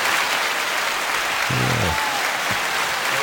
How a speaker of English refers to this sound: Absolutely, and little things go a long way. For example, you got applause there.